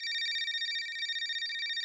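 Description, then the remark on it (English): A telephone rings with a rapid, high electronic trill, warbling steadily for a couple of seconds at moderate volume, with no voices over it. “As Alistair slips the folded straight blade into his pocket, he hears the phone ring.”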